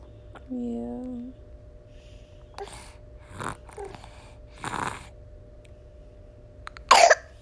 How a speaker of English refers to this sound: Yeah, this child has a bit of the sniffles and he keeps choking on his mucus.